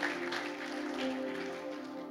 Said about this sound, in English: Let's give our music team a round of applause.